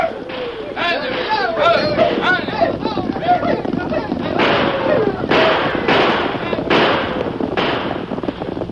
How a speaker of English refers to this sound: Suddenly, the deserted streets of Jericho echoed with the hoofbeats of many horses. There were wild shouts and the thunder of gunfire.